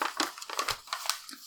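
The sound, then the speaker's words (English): Crisp crinkling of wrapping paper being carefully unwrapped from a gift of handmade Christmas decorations, revealing blue paper underneath, a quick run of irregular rustles and crackles with a soft thump partway through, no voices. “I'm going to try and be careful because I want to keep the front paper because you've put a lot of time into this.”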